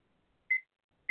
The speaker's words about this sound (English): And I'm going to set my timer.